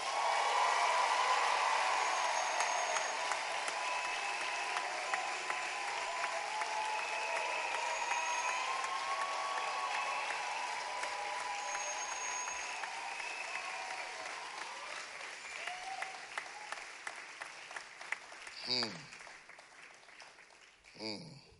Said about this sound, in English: Wow. Is that your best clap for the night?